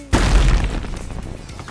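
A vat of flues is knocked over with a sudden loud, booming crash, followed by a rumbling, clattering tail that slowly fades. No one speaks.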